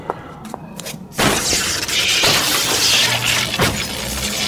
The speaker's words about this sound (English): Do you know what you've done? I smashed the computers with the axe.